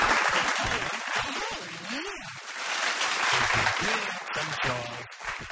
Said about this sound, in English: Some more applause for Jane Allsop.